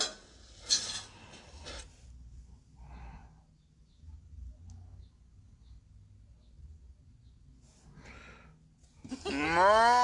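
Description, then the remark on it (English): Over a steady low rumble, a few short scraping or clattering bursts come and go before a loud, drawn-out cow moo rises near the end. “The mooing sound comes later.”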